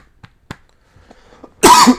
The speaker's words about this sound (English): Makes me cough. Don't do that again.